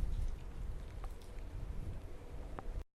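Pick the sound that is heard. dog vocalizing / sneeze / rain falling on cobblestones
rain falling on cobblestones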